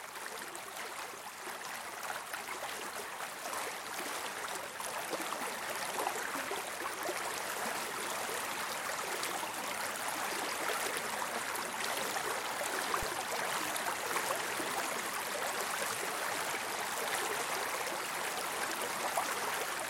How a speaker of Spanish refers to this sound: Por favor, quédense con nosotros unos momentos más para recibir el beneficio de una terapia sensorial, el sonido del agua.